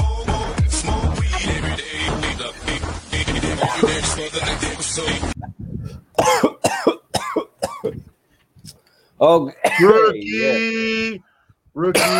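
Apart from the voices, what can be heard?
cough and throat clearing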